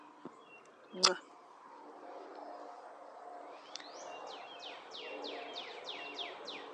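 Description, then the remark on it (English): Birds chirp outdoors in a steady run of quick, repeated descending notes, moderately loud, after a brief thump near the start, with faint background murmur. “Got loud birds today.”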